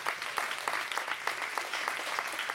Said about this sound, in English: Awesome. Let's give a huge round of applause to this incredible panel.